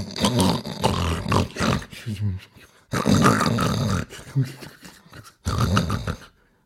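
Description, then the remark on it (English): A voice imitates a sleeping giant's loud snuffling and snoring: deep, rasping, growly breaths in three long bursts separated by short pauses, prominent. “Soon the giant fell asleep and his snuffling and snoring echoed round the room.”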